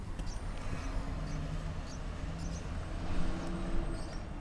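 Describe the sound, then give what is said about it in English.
Faint, high-pitched chirps from pet lovebirds or parakeets, tropical birds kept downstairs in a house and heard from an upstairs apartment, repeat irregularly in short bursts over a steady low hum, with no one speaking. “Those are some lovebirds, or parakeets. I don't know, these tropical birds my mother-in-law bought my kids.”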